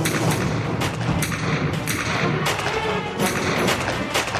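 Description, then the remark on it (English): A rapid burst of 21 gunshots fired inside a house, sharp loud cracks repeating in quick succession with uneven spacing, fired one after another over a few seconds with no voices. “21 shots in a matter of seconds.”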